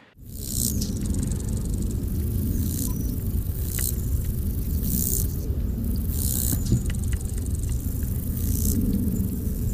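A male grasshopper sings its courtship song to attract a female: short, high-pitched rasping bursts repeating roughly once a second, steady and rhythmic over a low, constant background rumble, with no voices.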